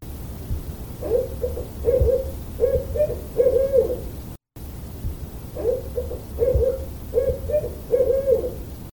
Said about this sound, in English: This was obviously way too easy for this crowd, so it was a barred owl, as many of you noted. And owls use hooting as communication to convey several different messages. It could be to claim a territory and fend off any would-be intruders.